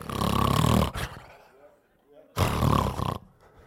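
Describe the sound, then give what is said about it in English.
A preacher imitates two loud, rasping snores with his voice, portraying the apostle Peter asleep in prison, each a harsh, rumbling burst lasting about a second, separated by a quieter pause with faint breathy sounds. “Now, I'm sure that was a very anointed snore too.”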